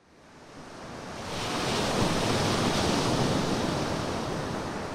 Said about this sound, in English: we're walking here at the interface between the land and ocean, Molly, better known as the beach